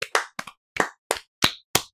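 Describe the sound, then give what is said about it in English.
A short burst of hand clapping marking the end of the film Birdemic 2: The Resurrection, about seven or eight sharp claps in a slightly uneven rhythm with a couple of quick doubles, fairly loud with nothing else in the background. “Can you clap,”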